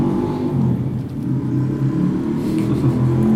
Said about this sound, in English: It's a very small motorbike with a very loud engine going past outside